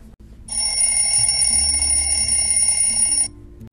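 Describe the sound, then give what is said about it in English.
A potato clock alarm, built as a fifth graders' science project in a library, rings with a continuous high-pitched electronic beeping for about three seconds, loud, then cuts off abruptly. No one speaks. “Okay, after hours of work, we can finally test our potato clock.”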